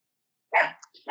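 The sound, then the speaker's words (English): A dog barks sharply after a moment of silence, then starts a second bark just as the sound cuts off. The barks are clear, with no voices. “And I remember, oh, sorry, I had a dog barking here.”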